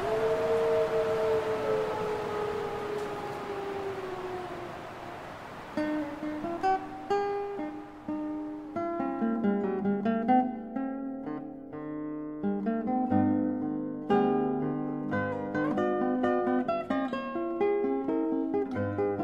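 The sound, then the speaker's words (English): Timber wolves, a subspecies of the gray wolf, howl in long, wavering, overlapping tones that slowly slide downward for about five seconds, then give way to instrumental music that carries on to the end. “These wolves were recorded by Brian Wright for the International Wolf Center CD, …”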